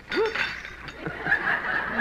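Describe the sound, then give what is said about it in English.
A water pitcher is knocked over, spilling its water, with a burst of clattering and glassy clinks, a short rising squeak near the start, then scattered knocks and rattles that continue for a couple of seconds. “I knocked over the pitcher and spilled the water on you.”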